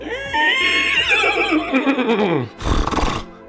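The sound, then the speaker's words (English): A person's voice imitates a horse whinny, a loud wavering high-pitched neigh that descends over about two and a half seconds, followed by a breathy snort-like burst. “I think you should close this out with a good horse nose. Okay. Horse nose. Horse noise.”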